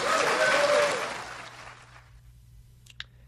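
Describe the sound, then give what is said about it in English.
A short round of polite audience applause following a speech by Mike Pence, a steady patter of clapping that fades out within about two seconds, followed by near silence and one brief click. “Okay, the polite applause for all of that.”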